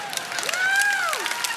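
An audience claps in a dense, steady patter for over a second, while a single voice lets out a rising then falling whoop over the applause.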